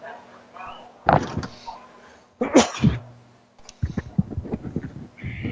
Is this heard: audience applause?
no